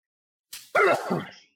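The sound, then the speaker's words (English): A single sneeze: a short, breathy intake followed by a loud, explosive burst that trails off with a voiced, throaty tail, with no talking around it. “Bless you, sir.”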